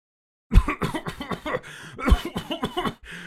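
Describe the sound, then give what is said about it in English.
A man at a table has a loud, unruly coughing fit: a dozen or so harsh, hacking coughs tumble out in rapid, uneven succession for nearly three seconds, with no talking. “As you guys are discussing this, the man at the table behind you begins a truly unruly coughing fit.”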